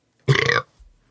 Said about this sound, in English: Burp.